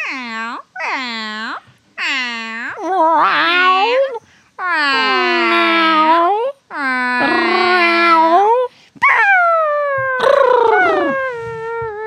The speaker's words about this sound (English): Today we're going to be focusing on cats meowing. What do cats sound like when they meow? Meow. Meow.